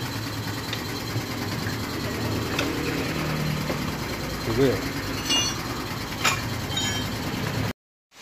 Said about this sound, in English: We had to drive for about a kilometre just down the road on a wobbly tyre and a guy is just rustling up some tools in the back to fix it for us.